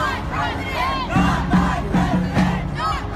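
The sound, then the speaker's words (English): A large crowd of some 4,000 demonstrators protesting Trump's election victory roars and shouts angrily in the streets, many voices overlapping in a dense, loud din, with rhythmic surges of chanting about every half second. “Some 4,000 angry demonstrators over Trump's election victory taking to the streets.”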